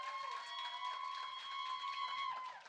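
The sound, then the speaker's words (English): A church audience claps and cheers for a woman coming up to preach at a morning service, a steady, dense wash of noise that holds for a few seconds, with a sustained high tone running underneath the whole time. “Y'all making me more nervous with all that yelling.”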